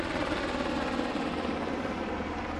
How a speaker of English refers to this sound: Lots of helicopters.